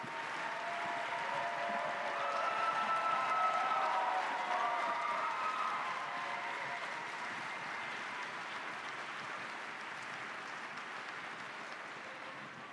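A crowd in Pittsburgh applauds a guest steadily, a dense wash of clapping that swells slightly around the middle, carries faint cheering tones, then eases a little while continuing to the end.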